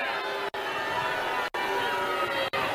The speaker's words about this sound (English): All right. So he's roundly booed because he has no clue how much we hate these masks.